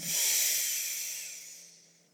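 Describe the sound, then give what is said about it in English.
A long, breathy open-mouth exhale with the tongue stuck all the way out, airy, starting strong and gradually fading out over about two seconds, with no talking. “Open mouth, exhale, tongue out all the way, release everything that no longer serves. Breathing in deeply”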